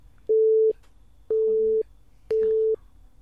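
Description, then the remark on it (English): Three loud censor bleeps, each a steady mid-pitched tone about half a second long, spaced roughly a second apart with faint murmuring in the gaps between them. “There's going to be amazing beeping out every moment of this, actually.”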